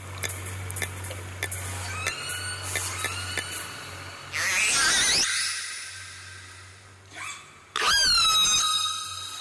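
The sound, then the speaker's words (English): Orca calls typifying the dialect of A-Clan, the family pod of the orca Springer: a steady patter of clicks and faint whistles over a low hum, then two loud, screechy rising pulsed calls with a shorter squeal between them. “I want you to hear a sample of the actual dialect, the vocalizations that typify A-Clan, which is Springer's family.”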